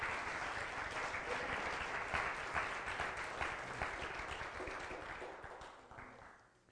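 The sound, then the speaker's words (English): A church audience claps together for Jesus Christ in a steady, dense burst of applause that holds strong for several seconds, then gradually thins and fades out. No one speaks over it. “If you believe that, give him a hand clap.”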